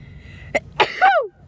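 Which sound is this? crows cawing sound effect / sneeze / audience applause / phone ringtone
sneeze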